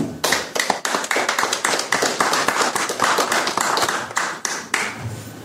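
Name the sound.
audience clapping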